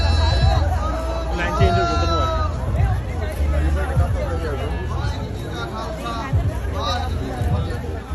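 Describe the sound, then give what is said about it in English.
Dense crowd chatter fills the scene, many overlapping voices blending into a steady, fairly loud hubbub with no single speaker standing out. “Wonder how many Kirpans are in that crowd.”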